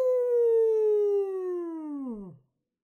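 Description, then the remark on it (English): A person imitates a wolf howl with one long, loud, sustained vocal tone that slowly slides downward in pitch, then drops off sharply and fades into silence after about two seconds. “At least, that is my best wolf sound.”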